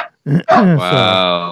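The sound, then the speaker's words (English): A dog gives a couple of short, sharp barks, then breaks into a drawn-out, high-pitched whine. It sounds loud, with no one talking over it. “So like I said, sorry, my dog is freaking out here.”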